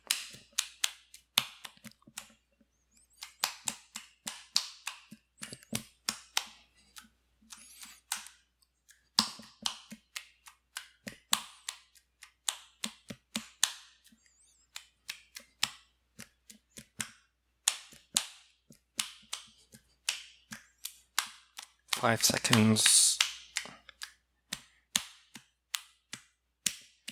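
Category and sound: human body sound, clapping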